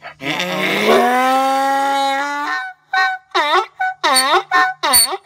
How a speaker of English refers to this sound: No, no more donkey noises. Donkey noises are too horrible sounding.